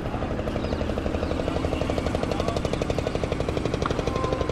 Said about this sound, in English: Just kind of observing, taking in the world, listening to it. This boat going by, out on the Ganges.